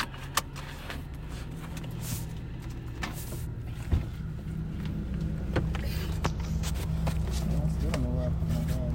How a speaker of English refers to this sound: Whose fan is doing that? We're all in the car, you know, making noise and talking, whatever. It's not so bad. Like, just being here and hearing that.